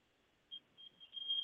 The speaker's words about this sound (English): As you can probably hear in the background, there's an alarm going off. So I see it's gone. It's finished. Somebody's just set an alarm off in the house, which is quite nice, isn't it?